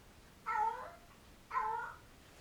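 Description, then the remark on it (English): A cat meows twice, each call a drawn-out, whining cry of about half a second, evenly spaced about a second apart, with no talking. “It's that cat again.”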